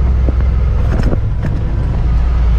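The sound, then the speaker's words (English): A vehicle engine drones steadily in first gear, a loud, constant low rumble with a few brief clunks and rattles over it as it climbs slowly up a big hill to a drill rig at a well. “We got a big hill we're getting ready to go up, so ride along with us as we get on up here to this drill rig.”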